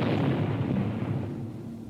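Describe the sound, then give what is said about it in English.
A boat blowing up out at sea beyond the bay: a deep, rumbling explosion roars with a broad low boom that slowly fades over about two seconds, with no voices present. “The speck of the boat turned bright orange and disappeared in an instant. A few puffs of smoke rose from the water where the boat had been.”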